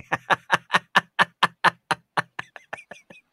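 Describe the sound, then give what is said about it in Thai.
A quick, steady run of about sixteen hollow knocks on a durian husk, evenly paced, fading slightly toward the end, with no talking; the durian is knocked to listen to its sound before peeling. “ได้เคาะฟังเสียงทุเรียนก่อนปอกไหมฟังออกไหมไม่ออกครับ”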